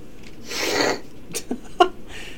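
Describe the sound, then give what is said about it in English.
Loud sniffing: one long noisy nasal inhale followed by a few short, sharp snuffles and a brief snort-like click, with no talking. “Can I sniff your bones?”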